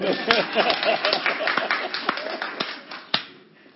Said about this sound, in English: How many people are following? Okay. Oh, clap hands for me.